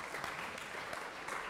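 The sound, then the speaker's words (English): A steady burst of audience applause for a student remembering the answer, backward induction, many hands clapping densely and continuously at moderate loudness, with no voices breaking through. “Round of applause for remembering the answer.”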